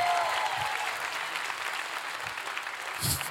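A crowd claps steadily, a dense wash of many hands applauding at a moderate distance, with a brief swell near the end.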